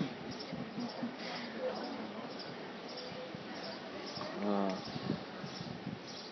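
A distant bird in Vejer de la Frontera, a white Andalusian town, gives a brief, shrill screech about two-thirds of the way through, rising above steady outdoor background noise and a faint murmur of activity.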